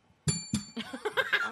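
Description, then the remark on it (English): A small bell is struck twice in quick succession, bright and fairly loud, its high tone lingering briefly before someone chuckles and laughs softly over the fading ring. “There's something wrong with this bell.”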